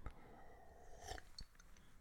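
Someone sips tea: a short, quiet slurp, followed by faint mouth and swallowing clicks over a soft background hiss. No one speaks.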